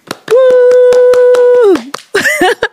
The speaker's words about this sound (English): So can we get a round of applause, please?